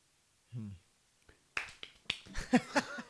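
A short hummed note, then a quick, uneven flutter of sharp hand claps, fairly loud, several in rapid succession with a faint voice mixed in near the end.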